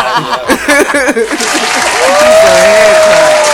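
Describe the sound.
After a brief stretch of voices, a burst of hand clapping swells into steady, loud applause from several people, with a sustained high whoop or whistle riding over it.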